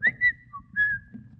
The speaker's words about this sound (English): Oh, I came as fast as I could. I thought you were whistling for me.